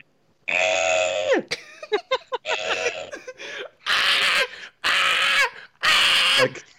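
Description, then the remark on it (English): A person imitates a screaming cockatoo with loud, harsh vocal squawks: one long screech, a burst of choppy shorter cries, then three drawn-out raspy screams in a row, alone. “My bird impression was solid. Yeah, yours sounds exactly like the cockatoos we have at uni.”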